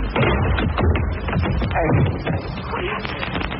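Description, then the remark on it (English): A rapid flurry of dull thumping punches and scuffling impacts, fairly loud, lands in a steady barrage, like a brief fistfight ending with a man knocked out. “You killed him, Shadow. I'll just knock him out.”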